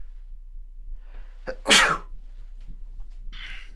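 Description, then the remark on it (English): A single sharp, loud sneeze bursts out after a quick intake of breath, followed by a brief sniff, with a low steady hum underneath and no talking. “thank you for those who say, God bless you.”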